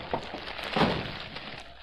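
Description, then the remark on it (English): A lamp is broken in a house: a short sharp knock, then a louder crash of shattering glass with a bright, noisy burst that trails off into faint clinking and hiss. “I've broken the lamp, Shadow.”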